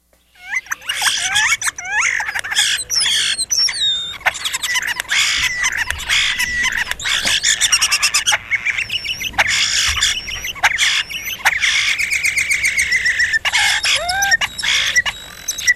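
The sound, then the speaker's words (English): European starling calls fill the air nonstop: a busy jumble of whistles, clicks, rattles and squawky chatter, loud, sounding like at least three birds at once. “So starling would be European. Here it is. European starling.”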